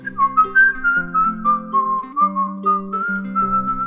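A high-pitched tin whistle plays a flowing melody, clear, over a steady bed of lower sustained accompaniment notes that shift beneath it.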